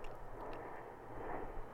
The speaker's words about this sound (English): You hear the airplane going over?